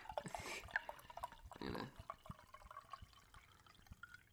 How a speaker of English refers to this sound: I'm going to pour one out for Dine. Oh, I can hear that fucking glug.